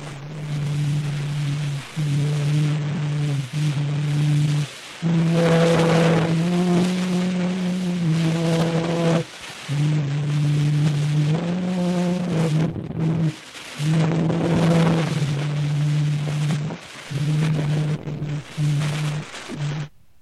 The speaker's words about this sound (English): But first, here is the oldest known recording of all time. Recorded on April the 9th, 1860, by Parisian inventor Edouard-Leon Scott de Marinville on a phone autograph, which worked by tracing sound waves onto paper blackened by smoke.